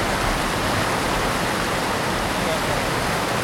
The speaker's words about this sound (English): That is a big waterfall.